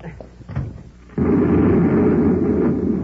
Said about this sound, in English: We're going back to the control room so you can stop that explosion. Can't be stopped now. It's too late.